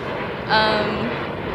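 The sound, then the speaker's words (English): A steady, broad roar of an airplane passing overhead near an international airport, swelling briefly louder with a faint whine before settling back into a constant rushing hum. “Apologies if you've heard planes and whatnot in the background.”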